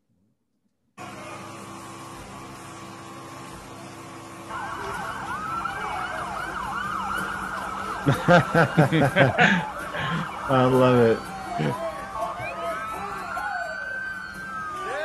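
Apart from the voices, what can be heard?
police car sirens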